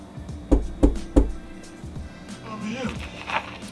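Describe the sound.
Three firm, evenly spaced knocks on a door ring out, followed by a voice speaking quietly in the background.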